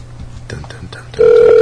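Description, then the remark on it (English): A steady phone ringing tone starts abruptly partway through and holds loud and clear to the end, after a moment of quiet talking and background noise. “Is it ringing?”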